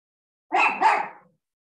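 A dog gives a quick pair of barks in close succession, clear, with silence on either side and no one talking.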